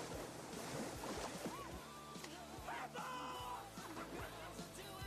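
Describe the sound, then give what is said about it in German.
A child splashes into water amid loud, continuous churning and sloshing, like surf, with shouts and some tonal background sounds running through. “Der ist aber sehr gut, weil das Kind weg und dann dieser Klatscher, dieser...”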